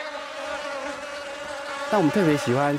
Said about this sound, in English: We especially like to attract bees that are higher up in the food chain. They live here in what we call the insect hotel. Without using pesticides, the farm controls the insect population by employing worker bees.